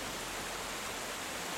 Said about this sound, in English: To stand over that sense of energy that a waterfall gives you is phenomenal. I love the sound, I love the drama of the scenery, the water as it cascades down through the dell.